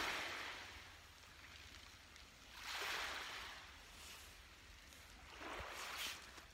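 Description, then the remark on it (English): Calm, smooth ocean water gently washing and lapping in slow, soft swells every few seconds, with a low steady background hum and no voices. “The ocean is so smooth right now.”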